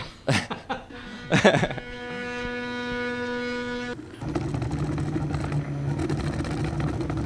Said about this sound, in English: This is sort of a do-it-yourself 3D printer, but I assume that there are much bigger 3D printers if you're in the commercial end of this sort of an operation.